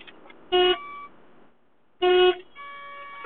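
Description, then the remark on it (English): Two loud, harmonic car horn blasts about a second and a half apart, each roughly a quarter-second long, followed by a fainter, steadier horn tone lingering near the end; drivers honking in traffic at a car stopped at a green light. “And so, sorry, there's a bunch of people honking here.”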